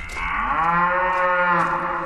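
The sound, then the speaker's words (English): A cow lets out one long, loud moo that holds steady for about two seconds, with a rich harmonic drone and no speech. “She is a good-looking cow.”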